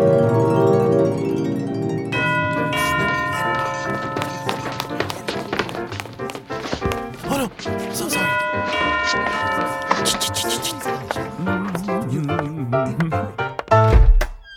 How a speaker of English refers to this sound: But before Viola arrives, someone else rings the doorbell at Olivia's mansion.